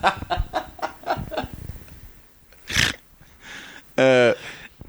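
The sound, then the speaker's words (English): A human voice mimics a rooster, starting with a quick run of clucking pulses, then a breathy burst, and ending on a loud, sustained crow-like call. “But if you remove it, he starts making rooster noises.”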